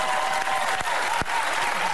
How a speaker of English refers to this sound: Begging for applause.